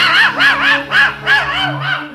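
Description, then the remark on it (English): A dog named Wolver barks about six times in a quick, steady rhythm, each bark a sharp, fairly high yelp, with a low steady hum underneath and no talking. “Oh, good. Wolver's got him. Here he comes now. Good boy, Wolver. Drop him right there.”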